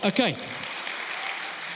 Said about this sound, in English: Give him a round of applause if you know him.